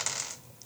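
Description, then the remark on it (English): Brief clatter of dice tumbling across a tabletop, a quick burst of clicks that settles, then one last faint tick. Fairly quiet, with no voices. “You know, one of those dice is automatically max roll, right?”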